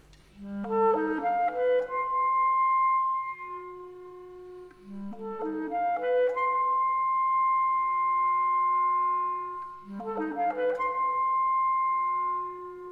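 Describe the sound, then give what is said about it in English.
A solo clarinet plays a short melodic phrase three times, each rising from a low note through quick steps to a long, steady held tone, fairly loud with no voices. “Could we just hear that clarinet melody, which is so important to this piece?”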